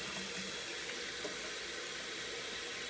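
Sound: tap water running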